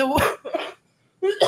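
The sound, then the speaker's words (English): A few harsh coughs come in two quick bursts separated by a short silence, loud and raspy, with a voiced, throaty edge. “Wait for the cough.”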